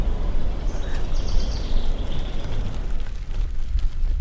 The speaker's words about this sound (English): I'm at the entrance to Middle Falls Crossing. I'm barely a block from St. Paul, but already the sound of birds is starting to overtake the sound of traffic.